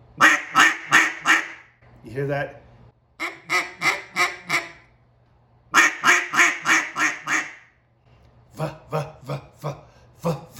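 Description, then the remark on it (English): Harsh, raspy, aggressive barking quacks blown on a cut-down duck call in quick bursts of four or five sharp notes, repeated several times, with a brief spoken question in between. “But when I get to the axe and to the cut down, it's got that more of aggressive sound. So you want to get that bark, and it's my bark is a fuh, fuh, fuh.”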